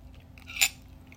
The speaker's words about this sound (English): I'm drinking my coffee, by the way, so you're probably going to be hearing like a lot of clink clink